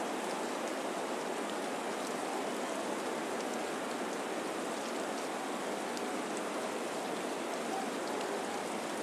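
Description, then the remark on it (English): Steady rain falls throughout, a dense, even hiss with scattered sharper drop taps on a surface, constant in level, with no voices; the rain is causing a regulation baseball game involving Cadillac to be called. “And it looks like this one will be called for rain.”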